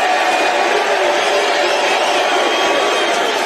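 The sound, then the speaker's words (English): A large crowd applauds and cheers without letup, a dense, loud wash of clapping and voices that stays steady from start to finish, with no one speaking over it. “Sounds like a lot of applause there to me.”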